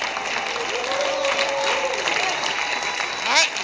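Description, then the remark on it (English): An audience claps steadily in dense, continuous applause, with voices shouting and calling out over the clapping, rising into a brief louder cry near the end. “Clap, shout, and use your mouth with the voice of a winner.”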